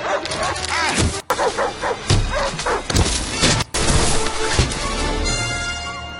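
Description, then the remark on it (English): A dog barks in a quick series of sharp yips and woofs over a busy, cluttered background, with a few harder percussive thumps mixed in. “It's a dog.”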